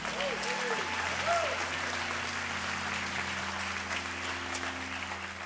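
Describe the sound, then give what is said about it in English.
Steady audience applause at a church service for the worship team fills the whole stretch, a dense wash of clapping that holds at an even level, with a low sustained tone underneath and a few brief voiced whoops near the start. “Let's give a round of applause for our worship team.”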